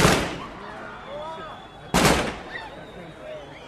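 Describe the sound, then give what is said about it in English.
A ceremonial burst of gunfire by uniformed Palestinian soldiers and policemen leading a funeral procession: sharp, loud gunshots crack out at intervals, each followed by a ringing echo and a murmur of crowd noise in the background. “Uniformed Palestinian soldiers and policemen leading the funeral procession led off a ceremonial burst of gunfire.”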